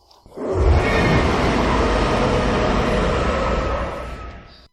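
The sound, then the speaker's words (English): A Godzilla movie monster scream: one loud, harsh roar held for about four seconds, with rumbling low end and a rasping, screeching top, tapering off at the end. No one speaks. “I do have here several different Godzilla screams, I think.”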